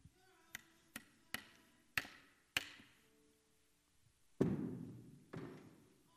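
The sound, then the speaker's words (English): Hammers drive nails in a steady rhythm, five sharp metallic knocks that grow louder, followed by two heavier, booming hits that ring out and fade. No voices are heard. “But we've got a few hammers and some nails.”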